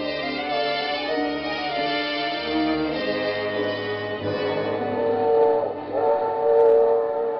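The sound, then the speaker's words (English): A train rumbles steadily along with a dense, layered mechanical drone and tonal whine, fairly loud for several seconds, swelling slightly near the end with no voices. “The package was light in the drawing room, and the train was comfortable.”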